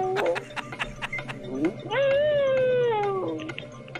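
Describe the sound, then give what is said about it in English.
A 14-year-old dog named Holly lets out a long, sustained howl lasting over a second, slowly sliding down in pitch, preceded by a couple of short whiny yelps and some scattered clicking noises. “Listen, I can make Holly howl.”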